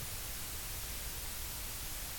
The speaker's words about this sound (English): Leave you be with some interruption-blocking white noise.